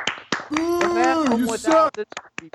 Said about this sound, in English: So you don't even have to play the sound effect. Everybody on your feet and a round of applause for DJ.